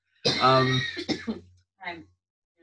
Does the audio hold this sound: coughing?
yes